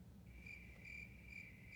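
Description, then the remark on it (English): Crickets chirp in a steady, high-pitched trill that swells in regular pulses, quiet over a low background rumble, with no voices. “Crickets right there.”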